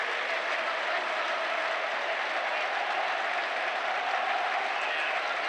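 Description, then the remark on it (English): A large crowd of Swansea football fans gives a patronising clap, clapping steadily for the whole stretch, a dense, even wash of applause with no single claps standing out and no clear voices. “That is the most patronising clap ever.”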